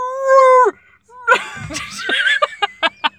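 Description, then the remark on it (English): A person loudly imitates a shrill, enraged bellowing bull, giving an impression of screams distorted through the tubes of a torture device: a sustained high-pitched wail, then strained, raspy screeching that breaks into several short rhythmic bursts. “It's either a very shrill bull or...”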